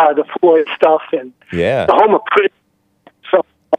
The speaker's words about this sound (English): Oh, no, you're breaking up a bit there. What did you say?